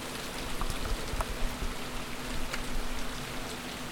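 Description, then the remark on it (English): Steady rain falls continuously, a dense hiss with scattered droplet taps and patters, moderately loud, with no voices. “I like the sound of rain.”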